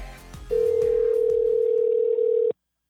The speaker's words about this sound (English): We're going to leave the suspense with the phone ringing like this.